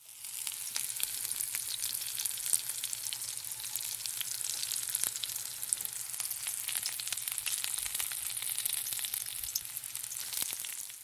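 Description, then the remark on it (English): Butter sizzles steadily in a hot frying pan, a dense crackling hiss with scattered sharper pops, constant for the whole stretch with no voices. “That was butter sizzling in a pan.”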